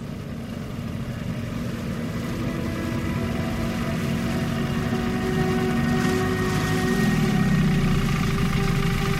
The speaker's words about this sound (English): The low hum of the engine slowly died down as my wooden boat made it to the middle of the lake.